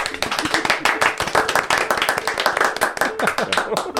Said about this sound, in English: Well, see, that was pretty good. Slow clap, everybody. Very well done.